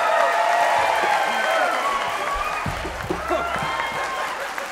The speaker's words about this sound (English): And actually, if we're going to give them one more round of applause because they just got married and they flew direct in from their honeymoon to be here with us.